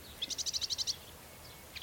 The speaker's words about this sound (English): This is a sedge warbler. Literally just landed on the post. There he is. Look at that. What a view.